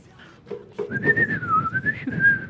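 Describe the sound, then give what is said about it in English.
A person whistles a wavering, bird-like tune as a signal at a door, a single sustained warbling note that rises and dips for about two seconds, with some low background rumble underneath. “I'm gonna, like, whistle. Bird whistle at him.”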